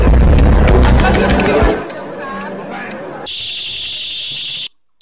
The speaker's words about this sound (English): You see what happened? The balloons are all the way up on the ceiling, way up there. And that alarm is going off throughout the room. I know it's hard to hear, but that's the point.